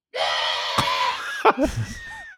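A man lets out a loud, strained yell up close, raspy and drawn out for about two seconds, with a brief break and a wavering, grunting finish. No other talking.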